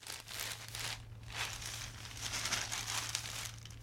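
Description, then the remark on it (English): Newspaper pages rustle and crinkle in irregular bursts as they are handled and folded while someone works on the crossword in an office. A steady low hum runs underneath, with no voices. “I was sitting in my office with a cup of Java, watching the sun come up and wrestling with the crossword in the paper.”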